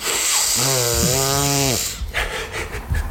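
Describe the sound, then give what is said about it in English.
A voice imitates someone in a toilet blowing their nose backwards: a loud, drawn-out, harsh, rasping, throaty snort lasting over a second, then a few short, breathy sniffs trailing off. “Oh sorry lads, I'm just blowing my nose backwards.”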